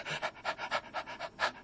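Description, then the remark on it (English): A voice imitates rapid, dog-like panting to illustrate the rapid breathing that is a sign of pneumonia: about nine quick, breathy huffs in a steady rhythm, moderately loud, with no other sounds. “The one is rapid breathing. You pant like a little dog.”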